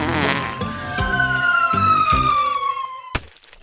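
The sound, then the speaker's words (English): A cartoonish falling whistle glides downward over a few soft thumps, then ends in one sharp, wet splat, a sound effect of a seagull pooping into an old man's beard. No one speaks. “A seagull poops in the old man's beard.”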